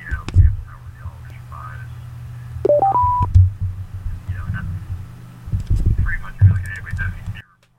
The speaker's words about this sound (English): Oh, I just heard a beep. You still there?